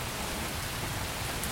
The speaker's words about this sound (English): When the rain eventually arrives, it truly pours. A substantial amount of water hits the ground in a very short amount of time.